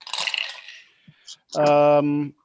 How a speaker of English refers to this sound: So again, I roll five, six, seven dice.